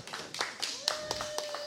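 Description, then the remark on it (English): A small crowd at the Den in Lavernia claps in scattered, uneven bursts, the sharp hand slaps moderately loud and irregularly spaced over a faint background murmur and a steady thin tone. “Thank you very much for the crowd.”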